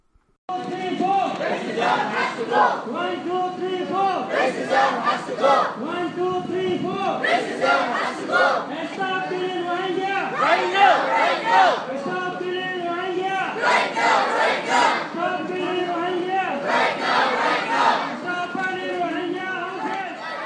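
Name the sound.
protest crowd chanting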